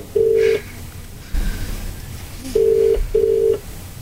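An outgoing call's ringing tone over a phone line: a steady, low electronic tone sounding once, then after a pause a quick double burst, clear and fairly loud, with no one speaking.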